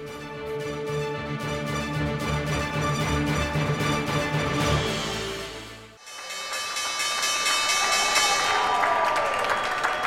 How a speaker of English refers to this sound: That was the opening bell, and U.S. markets are up and running.